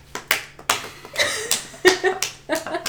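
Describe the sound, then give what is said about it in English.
Hands clapping in an uneven patter, roughly ten sharp, bright smacks over a few seconds, moderately loud, with faint voices murmuring underneath. “Sorry, I've been told not to clap.”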